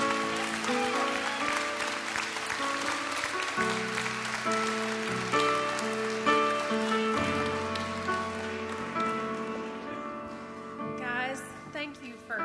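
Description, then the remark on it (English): After a prayer, a crowd claps steadily for several seconds as a hand clap to God to end the day, a dense wash of hand clapping mixed with sustained, shifting musical chords playing underneath. “Can we end our day with a hand clap to God?”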